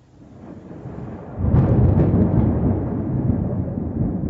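rumble of thunder

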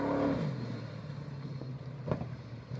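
car engine revving

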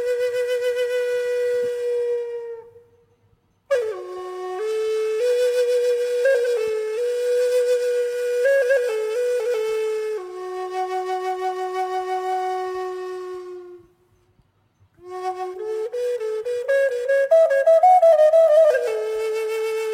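whistled melody

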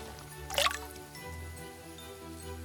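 water being poured

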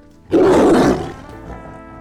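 tiger roaring

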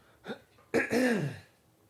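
throat clearing

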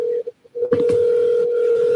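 phone call dialing tones

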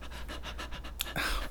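dog panting

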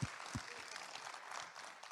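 audience clapping

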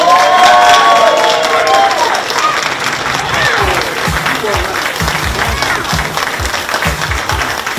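audience applause and cheering

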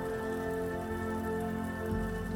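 heavy rain

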